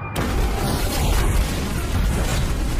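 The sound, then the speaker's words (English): A reinforced dropship slams at speed into the front of a stone temple. A huge crash and explosion erupts after a brief silence, then becomes a sustained, dense roar with heavy low rumbling and scattered crackles of debris, staying loud throughout. “Malgus watched the eyes of the Jedi Knights widen, heard the shouts of alarm from throughout the hall, then the screams, all of them soon overwhelmed by the roar of the reinforced dropship slamming at speed into the front of the temple.”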